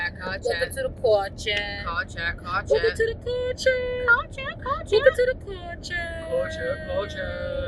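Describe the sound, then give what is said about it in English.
Steady low rumble of road noise inside a car on a nighttime drive at about 10:43 p.m., continuous throughout, with a person talking over it. “We are on a nighttime drive.”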